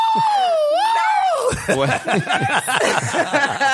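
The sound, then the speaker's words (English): A voice imitates an ambulance siren with a wavering, high-pitched wail for about a second and a half, then breaks into rapid, bursting laughter and chuckling. “Ooh, and I'm going to make a siren sound.”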